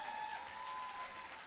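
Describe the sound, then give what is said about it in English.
A crowd claps steadily, a dense wash of many hands with no pauses, fairly loud and sustained throughout, with no voices standing out above it. “Clap well now.”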